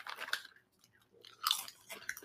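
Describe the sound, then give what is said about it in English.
Loud, crisp crunching of tortilla chips from Indonesia, made by the Krip Krip company, being bitten and chewed, coming in two main bursts with a short quiet gap between, then softer chewing trailing off. No talking. “Let's try the tortilla chips.”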